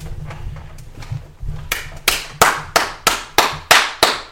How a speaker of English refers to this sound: We begin by applauding the champion of the tournament.